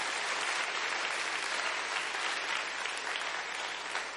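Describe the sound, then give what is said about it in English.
An audience gives the Lord a clap offering, clapping steadily and continuously, a dense, even wash of many hands with no pauses and no voices standing out over it. “Come on, give the Lord a good clap offering out there.”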